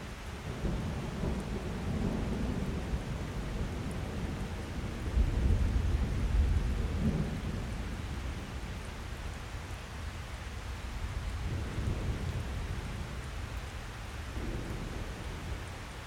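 Steady rain hisses throughout, with low rolling thunder swelling beneath it, loudest in a deep rumble about a third of the way in before easing back into the downpour. No voices.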